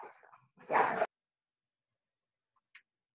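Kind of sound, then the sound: animal, dogs barking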